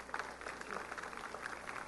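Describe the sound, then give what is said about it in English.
A crowd of women claps for God steadily for about two seconds, a dense, even patter of many hands at moderate loudness, with a few voices calling out faintly underneath. “That's a good place to clap for God.”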